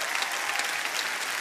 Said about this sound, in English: You know why I'm clapping? I'm excited to meet the me God sees.